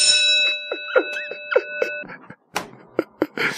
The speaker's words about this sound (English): I need the school bell. Bling. No, that's more like a telephone. That's a school bell right there.